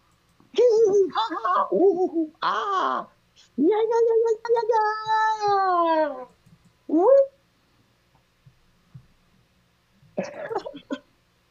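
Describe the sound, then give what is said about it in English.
A 12-and-a-half-year-old female pit bull mix dog named Sister whines to go outside in a string of drawn-out, wavering high cries, pausing briefly between them, then falls quiet before one last short whimper. “My dog has to go outside.”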